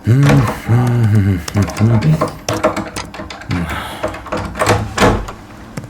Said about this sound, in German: Wo hast denn du den Schlüssel her? Warum öffnest denn du meine Tür? Das ist doch kein Schlüssel.